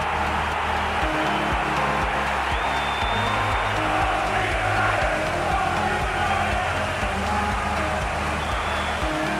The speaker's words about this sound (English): Redfern versus Redmond. And just listen to that noise from the crowd. Well, Redfern scores.